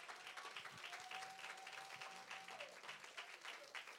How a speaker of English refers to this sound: Give the Lord some praise. Clap in here this morning. Come on, give him some praise. Give him some praise.